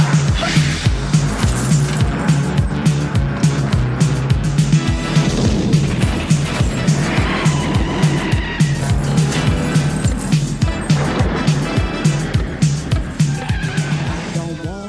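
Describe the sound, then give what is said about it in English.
A loud, dense film action-scene mix of roaring truck engines and screeching tires from a truck chase through the streets of Detroit, driven by a steady pounding rhythm throughout, with shouted voices briefly breaking through the din. “The first action set piece happens at the very beginning and is a truck chase through the streets of Detroit.”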